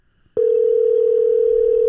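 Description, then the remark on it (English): A steady, loud electronic telephone tone sounds over the line, starting abruptly after a brief moment of quiet and holding one unbroken pitch to the end, with no voices. “As the phone rings, waiting on the other line.”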